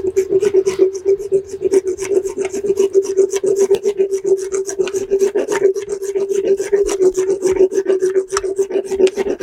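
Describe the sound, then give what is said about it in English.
A 45-angle dental float rasps steadily against a horse's teeth in quick, rhythmic back-and-forth strokes, producing a continuous gritty scraping with a droning tonal hum underneath, loud throughout with no talking. “So this is the 45 angle float.”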